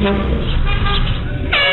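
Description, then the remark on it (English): Loud, sustained car horns honk continuously from passing traffic, with a second horn blast cutting in near the end over a muffled road rumble. “We've got video of people driving by honking from security cameras.”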